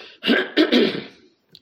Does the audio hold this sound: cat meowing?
no